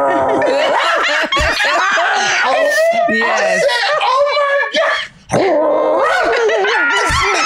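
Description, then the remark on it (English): A woman imitates a dog barking in a rapid string of loud, growly yaps, with snickering laughter mixed in and a brief pause near the end. “And her girl's like, rawr, rawr, rawr, rawr, rawr, rawr.”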